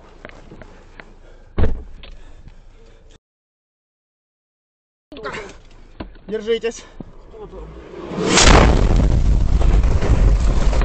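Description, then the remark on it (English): A powerful artillery blast erupts near a Ukrainian medic's car during the war, recorded on his GoPro camera, followed by a sustained roar of debris and rushing noise. Earlier, rattling cabin noise and a sharp thump precede a brief dropout. “An artillery shell explodes near his car, wounding him before he can ensure his patient's safety.”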